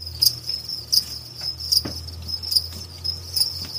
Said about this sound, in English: Yes, these are crickets. They're being raised for you to eat at the Rocky Mountain Micro Ranch in Denver. It is an edible insect farm.